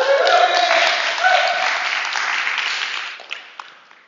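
A crowd cheers and claps loudly, with whoops and shouted voices riding over dense applause that holds steady before thinning out into a few scattered claps near the end.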